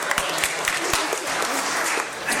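A round of applause: steady, dense clapping from a group of people, with sharp individual claps standing out over a continuous bright patter for a couple of seconds.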